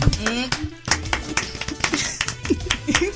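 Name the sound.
clapping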